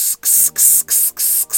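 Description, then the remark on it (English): Davidoff Cool Water cologne spritzed heavily from a fresh bottle in a quick run of about five or six loud, airy hissing bursts, each cut off by a brief silent gap, with no voices. “Like, I mean, if I spray my cologne on heavy, this is what I'm thinking at that”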